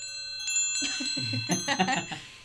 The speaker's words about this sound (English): And away it goes, and you hear the wind chimes.